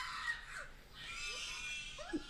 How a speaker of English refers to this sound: All right, here's the audio of me inhumanely screaming.